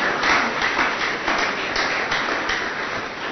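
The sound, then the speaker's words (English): An audience at an RCN Warri church gathering claps steadily throughout, a dense crackle of many hands blending into a continuous, even wash of applause with no voices standing out, celebrating Jesus over a 200 by 100 land acquired at Delta State University, Abraka. “Yes, you can clap.”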